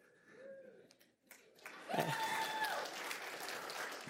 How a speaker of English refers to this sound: I feel like that was a sympathy clap. I don't know. You guys must have missed the trick.